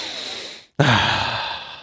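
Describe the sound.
A voice imitates someone sniffing a mummy: two long, airy breaths drawn through the nose, split by a short silence. The second starts sharper and louder, then slowly fades. No words are spoken.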